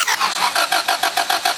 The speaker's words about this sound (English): If you've got a car that cranks but doesn't... I'm going to show you how to...